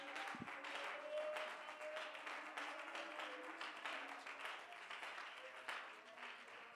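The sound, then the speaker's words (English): An audience breaks into sustained applause as a hand clap of praise to the Lord for victory, many hands clapping in a dense, steady wash that holds loud for several seconds, with faint voices calling out beneath it. “Can we give the Lord a hand clap of praise of victory?”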